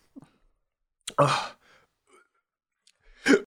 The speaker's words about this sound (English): Oh no, it's the hiccups.